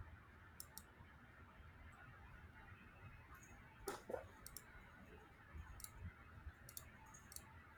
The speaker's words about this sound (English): Somebody's clicking their fucking mouse.